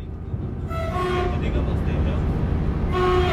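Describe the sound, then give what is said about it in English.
A passenger train to Brive-la-Gaillarde, on a non-TGV line running from Paris through Limoges to Toulouse in central France, rolls along with a steady low rumble, while sustained horn-like tones sound over the running noise twice in a few seconds. “the first train I needed to take was the train to Brive-la-Gaillarde”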